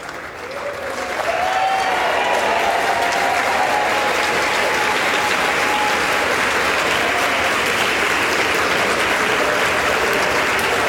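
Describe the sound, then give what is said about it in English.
Loud, sustained applause from a large crowd in the US House of Representatives chamber for Congressman Mike Johnson during the Speaker vote, swelling in over the first second and continuing steadily without a break, with faint cheering and voices mixed in. “The applause and the continues.”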